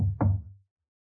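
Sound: knocking on a door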